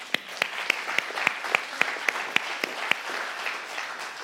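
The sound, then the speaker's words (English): An audience claps together in a steady, even rhythm, about ten sharp claps in a row over a soft wash of scattered applause that carries on briefly after the beat stops. “Let's clap that out.”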